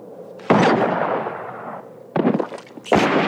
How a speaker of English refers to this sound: Gun battle. I'm not going to play the whole thing because it's just a bunch of boom, boom, boom, booms.